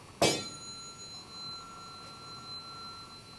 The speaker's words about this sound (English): I have this rod. This is aluminum. And when I bang it against the floor, it's going to rattle, and you should be able to hear that and see the frequency components.